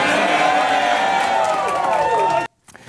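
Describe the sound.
A crowd of Donald Trump supporters cheers loudly and steadily as Trump says the name Ron DeSanctimonious is officially retired, a dense roar of many voices with whoops and shouts rising through it, lasting a couple of seconds before cutting off abruptly into near silence.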